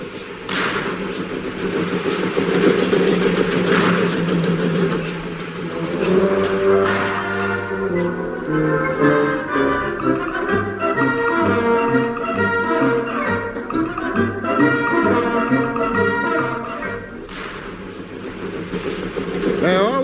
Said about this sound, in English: Listen to that engine, purring like a kitten.